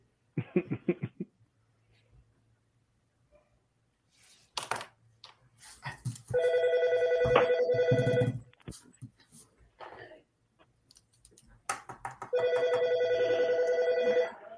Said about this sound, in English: I know that's not a cell phone ring. That is a home phone ring. So I know that eliminates three-fourths of the people on here.